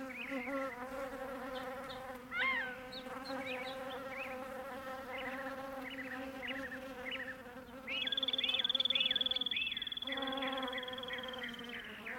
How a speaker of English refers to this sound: Once the sun rises, the desert quickly heats up, and bees jump into action. Listen to these honeybees buzzing up a storm in a flowering mesquite.